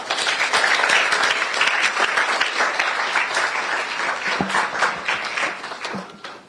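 A crowd at the NSMQ applauds steadily, a dense wash of many hands clapping at a loud, even level for several seconds, with a few faint voices rising through it near the end.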